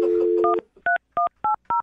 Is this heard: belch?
no